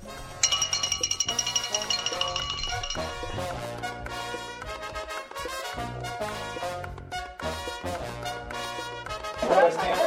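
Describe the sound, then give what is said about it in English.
A bell rings with rapid, repeated strikes for a few seconds, its bright high tone sustained and shimmering, before giving way to a busy mix of sound and voices. “Let me talk to the official and see if we can get a bell going.”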